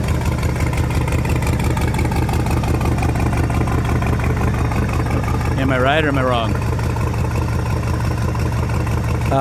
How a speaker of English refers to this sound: Duramax on the engine dyno. Not on the engine dyno. Up on stands. Sounds thumpy for a Duramax. Does that have the cam in it that you've been working on? Hear the blower.